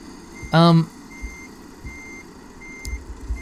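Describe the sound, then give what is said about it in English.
A truck reversing back into a truck yard: its backup beeper gives a single loud, harmonic-rich beep lasting under half a second, followed by a low, steady engine rumble with a few soft thumps and no talking. “We've got to pull out into the road and then reverse back into the truck yard.”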